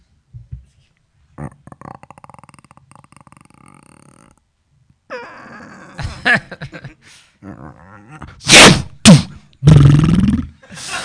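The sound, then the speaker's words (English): A voice imitates drawing and shooting a bow and arrow: a long creaking strain, then breathy whooshes and a few loud, sharp thunks, with no words spoken. “Do that one where you shoot a bow and arrow.”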